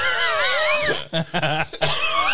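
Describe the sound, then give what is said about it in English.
A person mimics a laughing toy's squeaky, wavering laugh that breaks into a short run of raspy, choppy coughs, then slides back into the high laugh, loud. “He's like, and you know, he gets like, he's laughing real hard. He goes, he starts coughing.”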